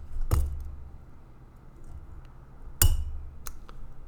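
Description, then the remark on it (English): Two sharp glass clinks ring out a couple of seconds apart, followed by a few lighter taps as a drink is poured into a glass, against a low background rumble with no talking. “You want another glass of that? Here, let me get that for you.”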